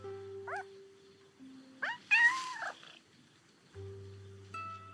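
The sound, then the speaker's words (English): A cat being coaxed meows several times, short rising calls and one longer drawn-out cry, with a low steady purr-like hum running underneath between them. “Come on, kitty.”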